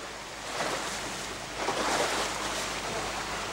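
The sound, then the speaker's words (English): Sea waves wash steadily around a small boat about 50 meters out to sea, a continuous broad surf rush that swells slightly midway, with a faint low rumble underneath and no voices. “Then we see a little boat about 50 meters out to sea.”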